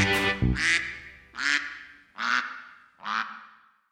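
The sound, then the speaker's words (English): A duck quacks five times in a steady, evenly spaced rhythm, each call a loud, nasal, raspy honk close by, with short silences between them. “Quack, quack, quack, quack, quack, quack, we're ducks with a watertight bond.”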